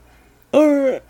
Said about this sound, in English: All right. I'm sorry. You're yawning. I'm sorry. Blame it on daylight savings.